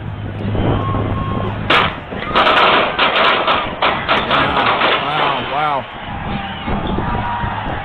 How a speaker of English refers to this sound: So a shooting broke out at the celebration. I know we have various videos with audio and kind of showing us the scene. Here's the moment that the gunfire broke out.